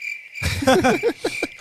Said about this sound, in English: That way we don't have some dead air and we have to use these crickets.